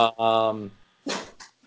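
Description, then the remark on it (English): A dog barks: one drawn-out, tonal bark, then a short pause and a rougher, breathier bark with a brief trailing yelp. “Dog number one chiming in.”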